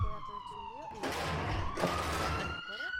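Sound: police siren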